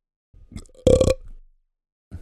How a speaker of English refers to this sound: And which is why I'm burping at 11:30 in the morning.